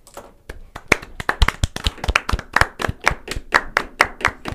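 Brisk, slightly uneven hand clapping, a steady run of sharp claps several per second, fairly close and moderately loud, with no talking over it.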